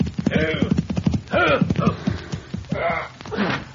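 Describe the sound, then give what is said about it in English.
Horse hooves clip-clop in a slowing, uneven rhythm as a rider reins his horse in before a cafe, with the horse snorting and whinnying in short bursts over the steps. “As our story opens, a rider reins his horse in before the Convict Valley Cafe.”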